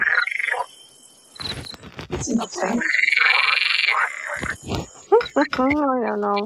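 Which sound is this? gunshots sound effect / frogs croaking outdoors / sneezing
frogs croaking outdoors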